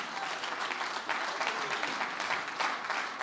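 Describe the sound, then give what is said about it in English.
An audience claps their hands in praise of God, a steady, dense burst of applause with many overlapping claps filling the whole moment at a fairly loud, even level with no one speaking. “How many believe he's God and he's able? Clap your hands and praise him.”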